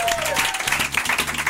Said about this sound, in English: And finally, a big round of applause to you, the Gene Divas, because we love you so much. Thank you.